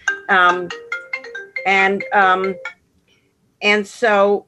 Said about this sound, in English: I'm sorry, my phone is gone off and I don't know why.